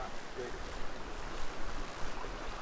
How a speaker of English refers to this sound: This is a nice river.